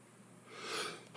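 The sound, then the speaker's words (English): A breathy inhale builds for about half a second, then one sudden loud sneeze bursts out at the very end, with no talking. “I feel a sneeze coming on. Oh, man. Here it comes.”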